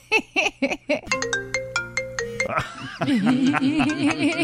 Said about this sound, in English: I think that's just the regular. Is it a regular iPhone ring? Or right, I don't know. Do like other phones default. Have it? Yeah, it's the default. Yeah, the default. The default. It's the default ring.